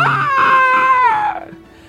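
A noon wraith lets out a terrifying screech: shrill and wavering with strong harmonic bands, it holds high and loud for over a second, then slides downward and trails off into quiet. No talking.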